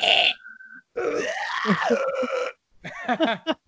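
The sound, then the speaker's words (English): Harsh, raspy grindcore-style vocal screaming in loud bursts: a short shriek, a longer strained growling howl, then a run of choppy guttural yelps, with no ordinary speech. “Now we're just four guys on a podcast screaming.”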